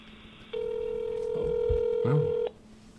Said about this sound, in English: Oh. We're calling somebody. Of course, the phone's gonna ring. It's working.